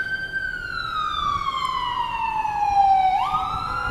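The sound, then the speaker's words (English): A loud ambulance siren wails, its tone sliding steadily downward as it passes, then jumping back up in pitch near the end, with traffic rumble underneath. “I'm waiting till the ambulance passes.”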